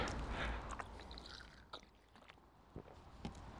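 Someone drinks ice-cold water during a break in a rowing workout, with soft sloshing and gurgling and a few sharp clicks of the bottle, over a low steady rumble. The sounds are quiet, with no talking.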